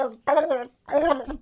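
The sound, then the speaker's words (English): A person imitates a pig with two loud grunting oinks separated by a brief pause, the voice rough and nasal, a noise made to scratch the throat. “Do kind of a pig noise, but that's not to be a sound effect.”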